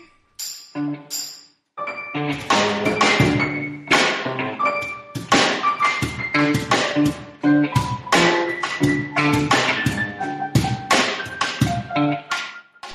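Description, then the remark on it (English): Piano music with struck chords and quick runs of notes, each attack ringing briefly before the next. Fairly loud and busy throughout, with a brief pause near the start and no voices. “Those sweet, sweet piano tunes you're listening to right now”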